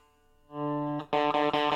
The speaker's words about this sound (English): Yeah, I got to get this fixed. I can hear it. You probably can't tell. You can probably hear it. You probably can't. The D open is buzzing.